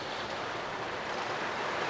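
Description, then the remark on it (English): Torrential rain pounding on a van, heard from inside the van, a dense, steady hiss and roar with no break or change in intensity, continuous throughout and with no voices present. Recorded with the recorder's microphones on normal sensitivity. “You can hear that rain, it's torrential.”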